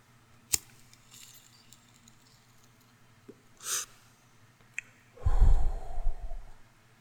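A lighter-like click, then a sharp drawn-in breath as someone takes a hit of marijuana, another click, and a long, heavy, breathy exhale. No one speaks.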